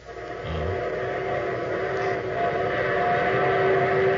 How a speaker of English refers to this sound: There's my train. The train that's taken me to my wedding, Throckmorton.